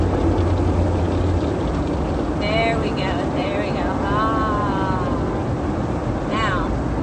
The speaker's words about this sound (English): Now I can see a little more clear out my windshield. Now, my car on the outside, it's clean, right? This car wash does pretty good. Now it's about to get dried.